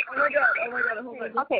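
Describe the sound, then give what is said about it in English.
A caller's voice over a narrow, tinny phone line during a live on-air call, its sound smeared and doubled by a hollow echo, running continuously for under two seconds before a short final burst. “It's echoing.”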